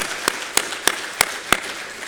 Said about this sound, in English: Thank them with a hand of applause, please. Thank you so much.